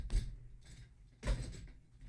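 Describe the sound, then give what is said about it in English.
A chair being handled and inspected for safety: a couple of hollow knocks and scraping clunks, with a fainter rattle between them, and no talking. “While I inspect the chair, it's”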